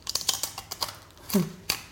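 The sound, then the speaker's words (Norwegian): Crunching of potato chips as someone eats and tastes them: a quick, irregular series of sharp, crackly snaps as they chew, with a brief low vocal sound partway through. “Det ser faktisk rart, når du spiser rart ut når du spiser potetgull.”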